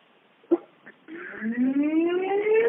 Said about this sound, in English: Oh, it's emergency count. You hear that siren? Yeah. It's emergency count.